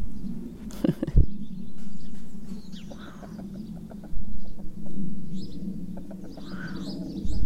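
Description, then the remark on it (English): A rooster named Mr. Cocky, the one remaining chicken, clucks in a series of short, soft calls, with a few chirpy notes scattered through and a steady low rumble of background noise. “Ah, the one remaining chicken.”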